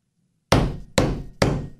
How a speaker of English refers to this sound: That's me banging my head against a wall.